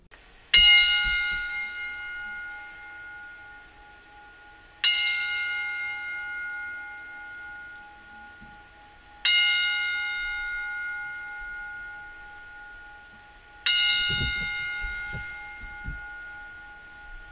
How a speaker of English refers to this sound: I'm going to be quiet for a moment, reflect, and listen to a 10-bell salute. So the bell will ring 10 times in honor of Andrea Correa.